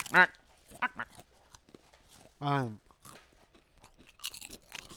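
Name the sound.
crunching a snack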